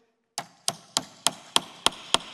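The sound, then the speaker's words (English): A third nail is hammered into a wooden picture with seven sharp, evenly spaced blows, each a crisp knock with a brief ring that grows slightly brighter and more metallic toward the end. No voices. “And I love if you nail a third, if you hammer a third nail in this picture, you know what happens?”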